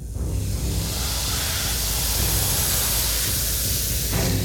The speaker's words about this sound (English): No cheer came from the amphitheater, only a dismal, universal hiss.